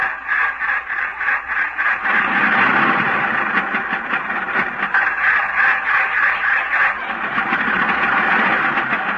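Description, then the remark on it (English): A car engine starting and running, a steady rumbling churn with a fast rhythmic pulse that holds at a fairly loud level for the whole stretch, with no voices over it. “I'm going to start at the car now.”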